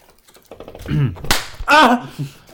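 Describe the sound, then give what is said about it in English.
A single light, sharp hand slap on a person, brief and crisp, surrounded by voices making short vocal sounds just before and after it. “Bitch, that ain't no slap.”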